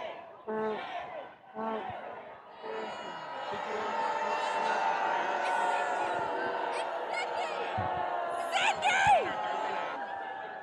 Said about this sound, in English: It looks like we're running into our first wave of Trump supporters. Is that what's going on? Are there Trump supporters? Wow. There's like six people. You are just screaming shame at them.